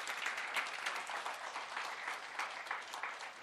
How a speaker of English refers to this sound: Keep clapping. They need all the encouragement in the world.